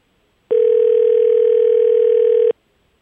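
A steady telephone tone sounds for about two seconds while a fan phone call is being placed. It is loud and unbroken at a single pitch, then cuts off abruptly, leaving silence on either side.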